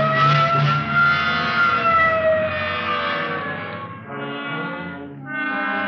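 A police car siren wails loudly and continuously as the car responds Code 3 to a shooting near Washington and Figueroa, its pitch sliding slowly up and down, with a low engine rumble underneath and no one speaking.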